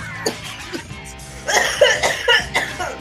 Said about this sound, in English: Oh, and that cough means that we are out of time.